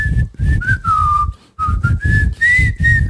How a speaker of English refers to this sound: I don't even know what this pod is anymore. We out here whistling.